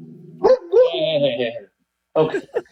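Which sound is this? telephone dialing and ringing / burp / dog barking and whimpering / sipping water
dog barking and whimpering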